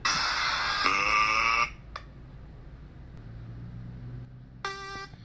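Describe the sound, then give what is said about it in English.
A timer alarm goes off with a loud, shrill electronic tone lasting over a second, followed after a quiet pause by another short beep near the end. “I fucked my timer up again.”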